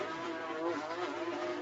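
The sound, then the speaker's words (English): Porsche 4-litre flat-six race car engines, just over 500 horsepower and the same power unit as the 992 Porsche 911 street car, roar steadily at high revs as the GT cars lap the circuit: a loud, dense mechanical howl with sustained harmonic tones that hold fairly constant throughout the short stretch. “Fantastic noises from these 4 litre flat six. What sweet music they make.”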